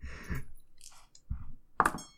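Dice are rolled, rattling and clattering across a surface in a few scattered bursts and ending in a sharp click as they come to rest on a double six; soft low thumps of handling in between, with no voices.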